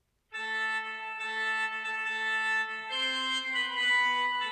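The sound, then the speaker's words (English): A spooky organ Halloween sound effect holds a loud, sustained chord, then shifts to a new, brighter chord partway through, droning steadily with no voices. “Spooky organ?”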